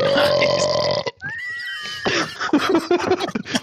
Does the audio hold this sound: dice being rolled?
no